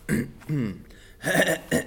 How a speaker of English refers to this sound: Clear my throat.